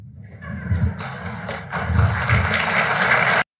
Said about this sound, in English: And Congresswoman, he's getting a lot of applause for that answer.